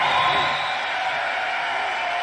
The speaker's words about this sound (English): A crowd full of people cheering still doesn't move the guy or excite the guy in any way.